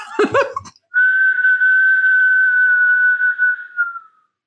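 A brief breathy vocal burst, then a single long, steady lip whistle held on one pitch for about three seconds, clear, trailing off slightly at the end.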